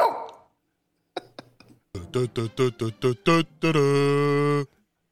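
A few faint clicks, then a quick run of six or seven sharp, evenly spaced barks from a dog named Eugene, ending in one loud, drawn-out howl-like bark, with no talking.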